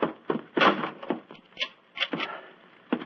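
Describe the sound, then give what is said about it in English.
A door is pushed shut, followed by a string of dull knocks and clicks as the lock is worked, spaced irregularly over a few seconds with no one speaking. “Follow me. Lock the door behind you.”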